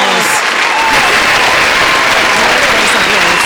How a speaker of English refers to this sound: Let's go. We in here. Long applause.